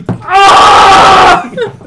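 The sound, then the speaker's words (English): One loud, shrill scream lasting about a second, strained, then a few brief, quieter vocal sounds trailing off afterward. “I will scream at this guy until he dies.”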